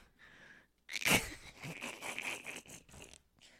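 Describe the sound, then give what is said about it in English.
A person sneezes once, loud: a short breathy intake, then a sharp explosive burst, followed by a few seconds of scratchy, rustling noise. “I'm gonna sneeze.”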